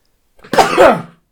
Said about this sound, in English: I need to sneeze. Sorry. Okay, go for it.